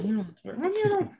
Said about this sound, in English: And as soon as you put it on, he like starts howling. Like, you're like, water. And he's like, woo!